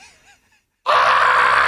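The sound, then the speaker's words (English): A voice imitates a frightened shriek: after a brief quiet vocal murmur and a pause, a sudden loud, sustained high-pitched scream bursts in and holds steadily to the end. “I hear another shriek.”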